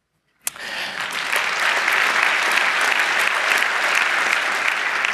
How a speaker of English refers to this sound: He, by the way, he's worth a round of applause because he invented the subroutine along with many other cool things, which is indeed a layer of redirection.